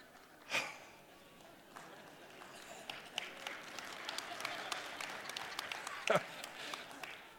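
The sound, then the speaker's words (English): An audience breaks into applause at a mention of roundabouts: scattered clapping builds into a steady, moderately loud patter that runs for several seconds, marked by a couple of sharper bursts. “They just applauded roundabouts.”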